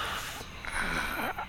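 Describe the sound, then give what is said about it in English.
A deep, throaty Ujjayi yoga breath exhaled through the nose while connecting with the back of the throat, a steady hiss with a slight snoring rasp lasting about a second and a half, with no talking. “So breathing in, connecting with the back of the throat, and exhaling out through the nose.”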